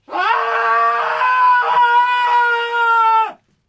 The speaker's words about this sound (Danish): gav sig til at skrige